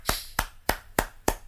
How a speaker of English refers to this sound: It's like the Citizen Kane clap. Just big slow claps right here.